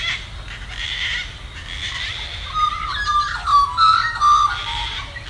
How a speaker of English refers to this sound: Kate sent this in from Eltham in Victoria, and you can hear that persistent noisy minor, beep, beep, beep, beep, and magpies in it.